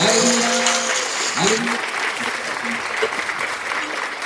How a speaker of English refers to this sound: My brother, my sister, where you are, applaud for the Holy Ghost. Applaud for the Holy Ghost. Applaud, my brother, for the Holy Ghost in the name of Jesus Christ.